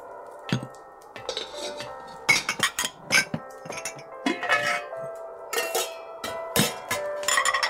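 Glasses clink together in a Christmas toast to good health, a series of bright ringing taps spread over several seconds, with sustained tonal rings lingering between strikes. Fairly clear, with no talking.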